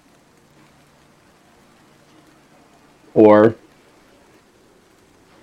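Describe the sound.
Soft, steady rain hisses in the background throughout, a low continuous patter that is beginning to pick up, with a single short spoken word from a voice partway through.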